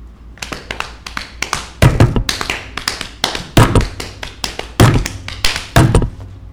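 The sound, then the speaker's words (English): A drum solo tapped out by hand: quick, loud sharp taps in a busy, uneven rhythm, punctuated every second or so by heavier low thumps like kick-drum hits, with no talking. “Give me a drum solo.”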